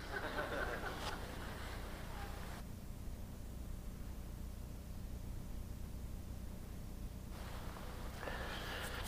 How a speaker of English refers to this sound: And so as soon as I blow my nose, we'll get started.